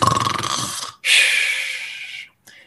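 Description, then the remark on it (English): A voice imitates snoring: a rough, rattling inhale followed by a long hissing exhale, then a short faint breath at the end. Loud, with no talking. “And your body falls asleep and you start snoring.”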